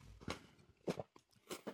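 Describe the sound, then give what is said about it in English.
A person takes a small sip of a drink, with three short, soft, wet mouth-and-swallow sounds spaced evenly, quiet, with no talking. “Sorry, I was taking a little sip there.”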